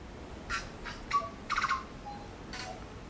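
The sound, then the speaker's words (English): A tui calls on a muddy hiking trail late in the day, a short series of raspy, bursting notes mixed with brief whistled tones, spaced irregularly over a few seconds against quiet outdoor background. “And then she stops and says, "A tui."”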